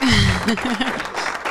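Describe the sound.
An audience applause sound effect: a dense, steady wash of clapping with a few cheering voices rising and falling over it, loud throughout its short burst.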